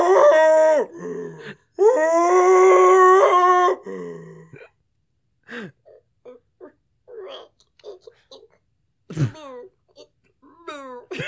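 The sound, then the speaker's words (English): A person vocally imitates a cow giving birth: two long, loud, strained moaning howls with wavering pitch, followed by quieter scattered vocal noises and a brief rising squeal. The imitation also includes the baby cow mooing. “Can you do your cow giving birth noise?”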